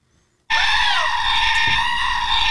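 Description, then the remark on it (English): A loud, harsh goat scream bursts in abruptly after a brief silence and holds steady as a shrill, sustained wail, with no talking. “With that, I wake up to those screaming goats”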